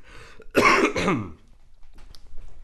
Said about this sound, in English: Oh, man. This cough has me sounding like a 60-year-old smoker.